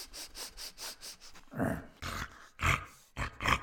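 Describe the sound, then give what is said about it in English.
An animal snorts and sniffles loudly: a quick run of rhythmic, airy sniffs, then heavier, throaty snorting bursts with a faint growl. No one speaks. “After they had laid there a while, they heard something snorting and sniffling loudly.”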